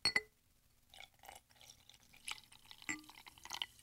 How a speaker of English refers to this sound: I was thinking of adding my carbonated water with some lemon to it, which I'm going to try right now.